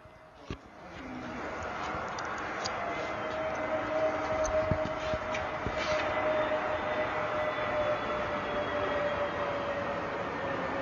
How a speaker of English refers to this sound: A plane lands. Because the Philadelphia airport backs up the fort. When a plane lands, and right as the plane, it gets quiet, you hear a woman scream. It's really loud. So we'll play that clip for you guys. And here comes the plane.